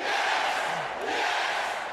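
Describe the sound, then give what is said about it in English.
A large wrestling arena crowd roars in a frenzy, a loud, unbroken wall of cheering and yelling that holds steady for the whole stretch with no clear individual voices. “The crowd is in a frenzy here.”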